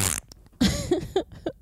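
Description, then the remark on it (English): A fart machine goes off: a brief hissy burst, then three or four wet, sputtering blasts in quick succession, fairly loud and with no talking over it. “Yeah, let me borrow your fart machine.”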